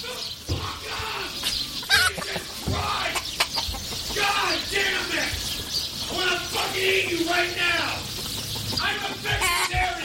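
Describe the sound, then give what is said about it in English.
A group of about 25 chickens clucks steadily, with busy overlapping calls throughout and occasional sharper squawks and thumps, amid a lively farmyard bustle. “Those are the chickens!”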